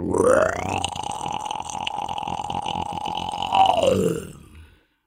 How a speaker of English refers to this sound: High in the canopy, howler monkeys call like Buddhist monks. Chanting deep in the throat.